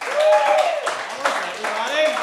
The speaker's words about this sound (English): First of all, clap if you're from these United States of America.